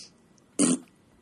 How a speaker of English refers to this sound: excuse me, sorry, it's because I had the burp.